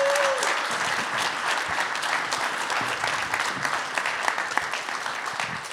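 Sustained applause from an audience, a dense steady patter of many hands clapping at an even loudness for several seconds with no one speaking.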